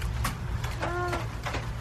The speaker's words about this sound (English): So I'll give you a multiple choice here. That is either A, a quiet trumpet in the rain, B, a chicken that's relaxing, or C, a snoring toddler. That is a relaxing chicken. there's no way a toddler's sleeping with all that background noise.